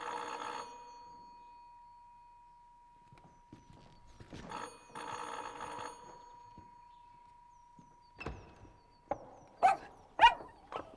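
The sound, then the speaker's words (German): A bell rings twice as someone arrives at the door, then near the end a dog lets out five or six quick, loud, excited barks in rapid succession, with no talking. “Ich freue mich, nicht so stürmisch. Na, du hast mich ja um.”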